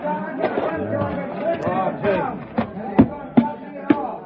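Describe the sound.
A crowd running away: an agitated babble of many voices, with a handful of sharp thuds spaced irregularly near the end.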